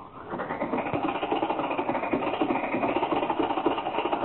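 An old car engine turns over and catches, then settles into a steady, rattling chug with a fast, even pulse that holds at a moderate level throughout, with no voices.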